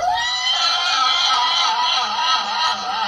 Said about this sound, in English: Horse noise, horse noise.